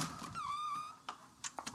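On a hot day, a door held open for someone leaving swings shut and is locked behind them: a short, high-pitched squeak from the hinge, then a few sharp latching clicks in quick succession. Fairly quiet, with no one talking.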